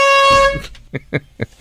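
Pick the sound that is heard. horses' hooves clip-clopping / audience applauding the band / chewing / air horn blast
air horn blast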